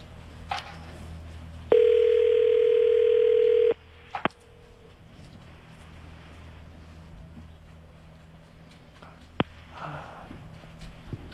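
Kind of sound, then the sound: signal or alarm, telephone dial tone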